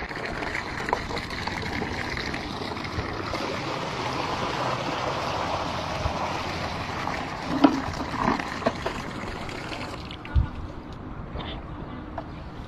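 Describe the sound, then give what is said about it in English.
Water pours steadily into a leaking bucket, a continuous rushing splash with a few brief clunks and drips near the end, without any voices. “No matter how much water I pour into this bucket, no matter how long I wait, it will never get full.”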